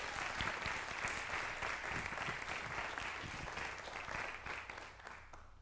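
An audience claps steadily, a dense wash of many hands filling the room at a strong, even level before tapering slightly near the end; no one speaks over it.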